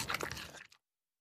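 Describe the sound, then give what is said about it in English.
A short burst of crisp crunching and chewing as four mountain goats in a candy store bite hard candies and chew toffees, lasting under a second before cutting to silence. It sounds quiet, with no voices. “The sound of crunching hard candies and chewing toffees echoes down the street.”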